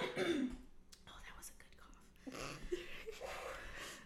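A person coughs and clears their throat in a few rough, breathy bursts, quiet, with a short pause between them and no speech.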